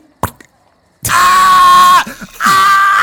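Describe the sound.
A person imitates a man screaming after a longsword strikes his shoulder: after a quick click, two loud, strained, sustained shrieks ring out, the first lasting about a second, with a short gasp between them.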